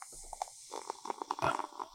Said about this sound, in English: Here's a little more ASMR. This is me pouring into a glass.